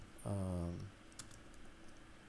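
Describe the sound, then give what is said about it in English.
A short buzzing tone is followed by a few light, scattered keyboard clicks as someone types text in again on a computer keyboard, with no one speaking. “Sorry, I'm just typing that in again.”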